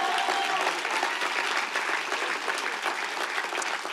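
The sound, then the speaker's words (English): Steady applause from a sizable crowd fills the whole stretch, dense and continuous clapping at a fairly even loudness, with no voices rising above it. “Somebody needs to clap that a little louder.”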